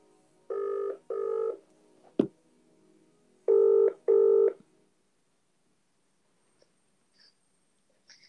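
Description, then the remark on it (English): Two double-pulse ringback tones sound through a phone line on an outgoing call, a soft click between them, followed by near silence with a few faint clicks as the call waits to connect. “So, right, I'm going to give him a call. Let's see if he answers the phone.”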